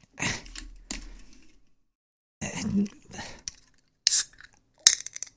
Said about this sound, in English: Let's open a beer. Let's get a beer over here.